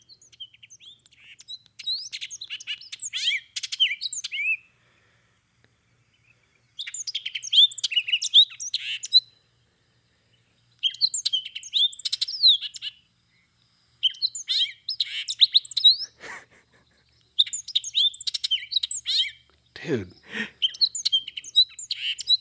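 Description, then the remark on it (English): Hooded oriole song: about six bursts of rapid, chattering, jumbled high-pitched notes separated by short pauses, with a couple of sharp sweeping notes near the end and no talking. “We're here to talk about the hooded Oriole.”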